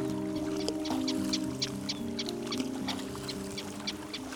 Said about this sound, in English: The birds are flying. A lot of terns out this morning. Oh, there goes a tern with breakfast. He's got it hanging from his beak. And another little guy chasing him.